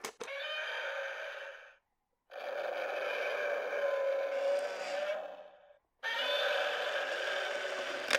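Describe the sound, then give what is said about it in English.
A Godzilla novelty coin bank whirs into action after a 50p coin is placed on its water beside a boat, blaring a harsh, buzzy electronic roar in three long bursts separated by brief silences, loud, with no one speaking. “We've got the Godzilla money box thing working, and it doesn't disappoint, man.”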